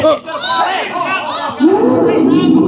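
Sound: crowd chatter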